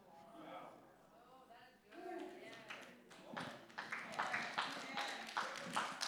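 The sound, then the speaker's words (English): A preacher's voice at the start gives way to scattered audience claps during a sermon. The claps quickly build into steady, moderately loud applause lasting several seconds, with some voices still audible underneath. “Man, it took me a long time to get a clap out of y'all.”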